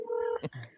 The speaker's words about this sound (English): Who's calling somebody? What is that?